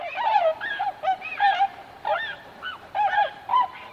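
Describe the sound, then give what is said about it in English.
Tundra swan calls, a rapid series of nasal, bugling honks overlapping one another, as if from several birds calling together, with no voices. “In fact, someone did actually take the time to count the feathers on a tundra swan.”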